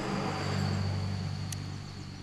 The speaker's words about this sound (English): All right. Well, I wasn't going to talk if, like, this big truck was going to come by. They're going to wait until we start talking. Oh, absolutely. I mean, the cars don't sound that bad in the audio, but anyway.